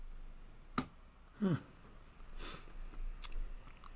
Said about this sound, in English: Excuse me, I'm eating ice.